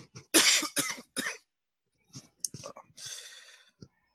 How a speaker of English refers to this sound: Yeah. Hold on, I gotta cough.